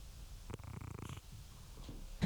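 cat purring

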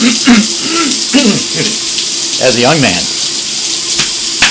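shower water running

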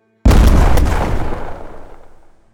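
truck bomb explosion

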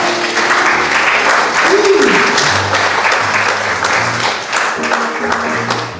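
audience hand clapping

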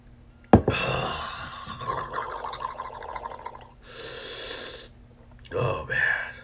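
sipping a drink

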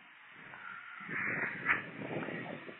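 car passing by

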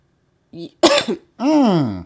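coughing

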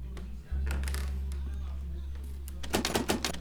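back door opening

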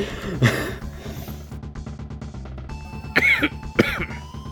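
coughing

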